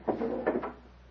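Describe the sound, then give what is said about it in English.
The door from a small anteroom into a private chamber is opened: a short wooden scrape and creak followed by a couple of soft knocks, all within about half a second, then quiet room tone. “He enters and quickly crosses the little anteroom to open the door to his private chamber.”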